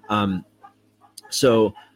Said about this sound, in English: Probably hear that chicken, he agrees with me.